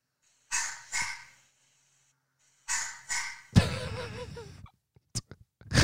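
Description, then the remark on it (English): A small puppy, not a chihuahua, barks with high-pitched, yappy barks in quick pairs, then a longer rough, squealing bark, followed by a few short sharp yips, fairly loud with no talking. “It's a small puppy.”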